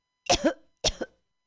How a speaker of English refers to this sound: This is a cough from weed. It's not from my Corona.